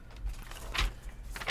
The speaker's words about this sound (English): Gonna flap your paper.